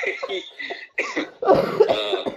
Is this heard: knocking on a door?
no